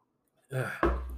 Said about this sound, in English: Let me get another sip of water here for a sec.